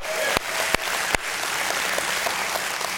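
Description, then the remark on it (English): A church audience breaks into steady applause as a hand clap of praise to God, a dense wash of many hands clapping at once, with a few sharper individual claps standing out early on, sustained throughout. “If you love your church, you love your pastor, would you just give God a hand clap of praise today?”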